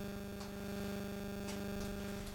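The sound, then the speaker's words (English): A steady electrical hum with strong low tonal bands and a crackly static wash, broken by faint brief bursts of noise, continuous and fairly quiet with no voices. “But it happens every time I get interference on this.”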